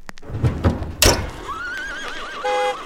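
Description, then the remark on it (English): A few sharp hoof clops ring out, then a horse gives a loud, quavering whinny that wobbles up and down before trailing off into a steady tone, in a depiction of the first ever use of a traffic light in London. “You got a f***ing accelerator pedal on that horse!”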